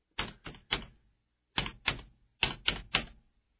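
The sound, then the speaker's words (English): A keyboard space bar is tapped eight times with a microphone held to it, in a rhythmic pattern of three, two, then three sharp clacks, each a loud, hollow plastic knock with brief pauses between groups. “Just I'm putting the microphone to the space bar so everybody can hear the sound of the space bar.”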